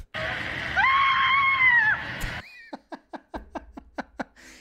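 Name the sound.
man screaming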